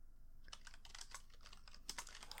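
Rapid, uneven clicking of keys on a computer keyboard, a steady burst of typing over a faint low hum, with no voices, as someone types out business emails.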